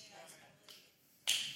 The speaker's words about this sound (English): Ooh. I like y'all clapping because that means you're getting it.